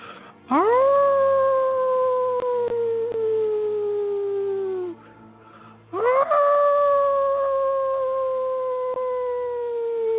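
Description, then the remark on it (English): Two long wolf howls, loud, one after the other with a brief pause between. Each swoops upward, then holds a steady, slowly falling note for several seconds. “So with a deep inhale, allowing yourself to feel this moment, allowing yourself to put all of it into your howl.”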